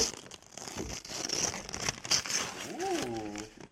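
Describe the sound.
Wrapping paper on a gift box is unwrapped with steady crinkling, rustling and a few tearing bursts. A voice briefly joins in toward the end.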